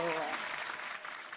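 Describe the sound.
A steady wash of crowd applause, dense clapping and cheering that holds at a fairly even, loud level throughout, with a brief voice tailing off at the very start.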